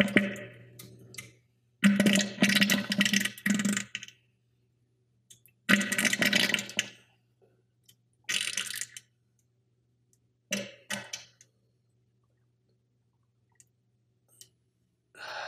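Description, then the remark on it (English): Someone pooping into a porcelain toilet: several irregular, crackling, spraying bursts separated by silent pauses, over a faint low hum, with no talking. “You recorded the audio of fucking of your poop?”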